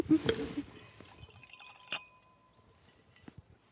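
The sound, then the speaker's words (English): Wine splashes briefly into a glass while tasting wine in the Awatere Valley, followed by a couple of sharp glass clinks that leave a faint ringing tone, fairly quiet. “So I think we might have a little try of this. Yeah. Sipping wine in the Awatere Valley on a Wednesday.”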